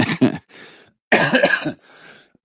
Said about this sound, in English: still has a cough, clearly. Sorry.